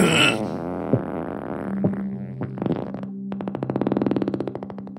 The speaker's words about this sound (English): … leaned onto one butt cheek and let out a huge, bubbling fart.